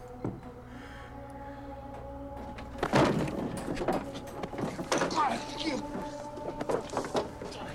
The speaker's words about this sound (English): Better open this door right now